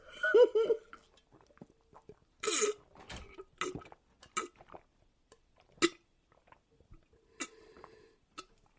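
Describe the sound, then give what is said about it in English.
Gulping and swallowing as people drink Bud Light beer, each trying to keep drinking longest: irregular wet clicks, breathy bursts and throaty noises in quick succession, with no talking. “Hold on, let's mutually take a sip. Okay. All right. First one to stop drinking loses.”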